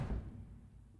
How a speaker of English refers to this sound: Like this is a deadbolted door. Yeah. I'm gonna knock on it. I walk in. Yeah, you do. you give a knock on the door.